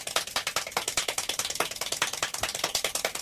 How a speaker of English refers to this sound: Oh, my. That doesn't sound like clapping. That's clapping. That sounds like somebody drumming. No, that's not clapping. That sounds like something else. It really does sound like drumsticks, like on a table.